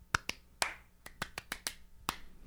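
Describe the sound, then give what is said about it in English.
About nine sharp, close claps in quick succession, spaced unevenly with no steady rhythm and no beat, imitating audience members who clapped this way during James Moore's comedy set, ringing out alone with no talking over them. “This girl kept, oh my God, they kept clapping.”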